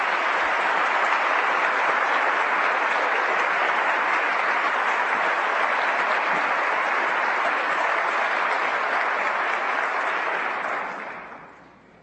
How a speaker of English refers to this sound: Let's have one more round of applause for all of our students this year.